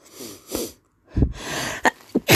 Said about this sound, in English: I have all these I'm gonna sneeze. I think I love that itchy feeling in your nose.